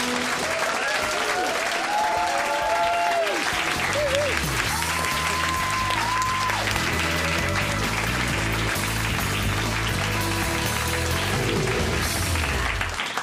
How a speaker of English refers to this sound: That is some violent applause. Well done.